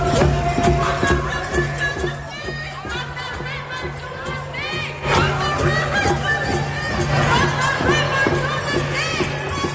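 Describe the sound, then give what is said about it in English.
A large protest crowd of about 25,000 people in the streets of downtown Toronto chants "from the river to the sea" in unison with a steady, rhythmic beat, many voices rising and falling together, with drumming, scattered shouts and general hubbub mixed throughout. “let's listen in to just a portion of the protests this weekend. There were about 25,000 people on the streets of Toronto in the downtown.”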